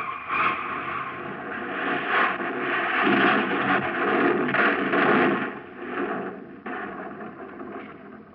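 A car rolls off a jack and over a cliff edge, hitting a ledge about 20 feet below and crashing down to the bottom, in a loud, continuous rush of scraping and grinding metal with several heavy crashing impacts over about eight seconds. No one speaks.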